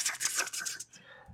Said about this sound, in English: They're probably just hearing typing in.